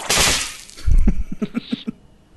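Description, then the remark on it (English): A bone-breaking sound effect: a sharp, harsh crunch, then a heavy low thud followed by a quick run of brittle cracks, loud, with no one talking. “It says bone breaking, but it sounds like that is not a bone breaking.”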